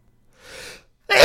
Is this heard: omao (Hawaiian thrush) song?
no